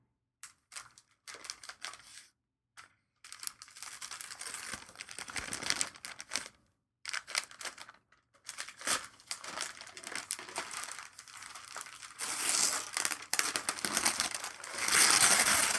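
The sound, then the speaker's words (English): Silver snowflake-patterned wrapping paper with alternating shiny finishes crinkles and rustles in irregular bursts with brief pauses as a gift is unwrapped, growing louder and denser toward the end as it is torn open. No one speaks. “It is a Christmas tree, or no, more of a snowflake wrapping paper.”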